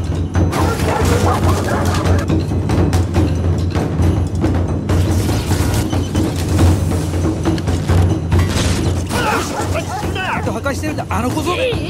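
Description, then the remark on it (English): A dog barks and yips repeatedly, its excited vocalizations tumbling over one another against a dense, noisy background with occasional clatter. “I wish somebody spoke his language.”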